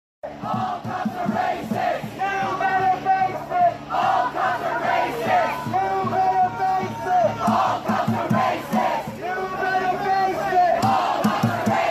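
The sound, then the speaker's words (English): A large crowd of hundreds of protesters chants in unison, loud, repeating rhythmic shouted phrases such as "all cops are racist" with many voices overlapping, as a street protest march moves steadily down the street. “So there they are marching down the street, hundreds of them, shouting all cops are racist while being protected by the cops.”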